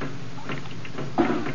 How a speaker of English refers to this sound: For as we look in on the Rileys now, we find them listening to the pitter-patter of the raindrops dripping into assorted pots, pans, and pails placed at strategic points in the living room.